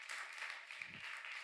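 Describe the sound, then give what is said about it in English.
Steady audience applause fills the moment, a dense, even wash of many hands clapping at a constant level without any voices rising above it. “I was not expecting applause for that, but thank you so much.”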